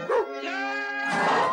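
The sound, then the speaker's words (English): A bulldog, Agent 11, the top canine agent in America, lets out one long, drawn-out bark that stretches into a strained, howling tone, loud, with no one talking. “A bulldog, Agent 11, the top canine agent in America.”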